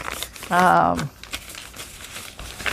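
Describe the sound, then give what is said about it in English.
Crisp paper crinkling and rustling as sheets of coffee-dyed paper are handled, folded on angles and torn for a loose journal, with scattered crackles throughout and a brief voiced sound near the start. “Here's some coffee dyed paper I made the other day that can go in there. And I'm folding some on angles.”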